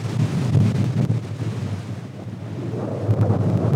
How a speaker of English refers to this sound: I wanted to test my recording gear to see how it held up in driving wind and rain. If my microphone could have talked right then, it would have said, "I'm with Stupid." Okay, it's getting a little too windy here.